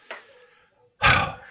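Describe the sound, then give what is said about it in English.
A dog barks twice: a short, sharp yelp, then after a pause a louder, longer, rougher bark that trails off. Nobody speaks. “The dog's barking right now.”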